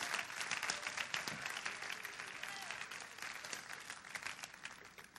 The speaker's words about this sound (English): Clap your hands to the Lord and give him praise right now.